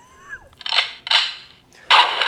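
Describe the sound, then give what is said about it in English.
A voice imitates diarrhea with a short rising tone followed by three loud, wet, sputtering bursts of spray-like noise, the last one longest. “It would sound like here's my diarrhea sound.”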